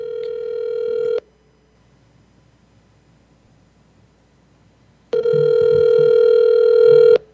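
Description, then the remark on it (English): An outgoing phone call's ringback tone: a steady, buzzy mid-pitched tone sounds for about a second, falls silent for four seconds, then returns for two more seconds. No one speaks. “Let's call him at the same time and see which one he picks up first.”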